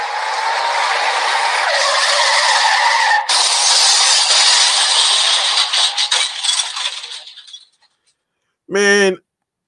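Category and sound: sound effect, car skidding sound effect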